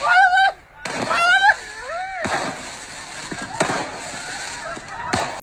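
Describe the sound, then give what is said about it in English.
Fireworks lit with a lighter go off: shrill rising whistles, then several sharp, loud bangs spaced a second or so apart, with crackling and rumble in between. “So the fucking fireworks light right in front of him.”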